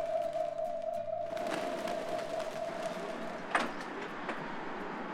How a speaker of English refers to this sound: The pigeon whistle is the most characteristic sound of Beijing.